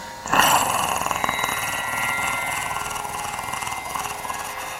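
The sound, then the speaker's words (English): A 452-horsepower muscle car engine fires up with a sudden burst, then settles into a steady, throaty rumble that holds for several seconds with slight fluctuations in its growl. “You turn it on and it just rumbles.”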